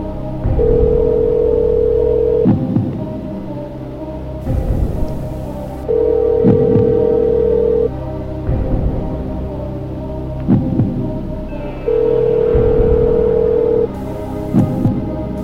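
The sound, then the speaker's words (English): A Skype outgoing call ringing tone while calling a friend: a steady electronic tone sounds three times, about two seconds each, with long pauses between, over a low background hum. No one speaks. “Let's use the trusty rusty Skype feature of, Skype. Skype. See if he's available or not.”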